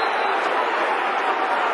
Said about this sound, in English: He's got to get a yellow card. The crowd are outraged.